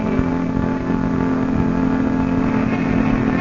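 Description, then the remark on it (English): A waiting taxi's engine idles steadily, a continuous low rumbling hum with a faint harmonic whine, even and unbroken throughout, with no voices. “would it be an imposition, seeing you have a taxi waiting for you, if I asked you to give me a lift?”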